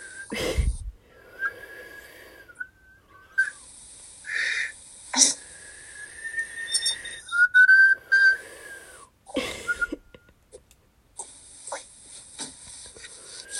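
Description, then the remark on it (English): A person whistles by breathing inwards, producing thin, wavering tones in short bursts, airy and breathy, with sharp intakes and pauses between attempts, without any talking. “I can whistle inwards, but not outwards.”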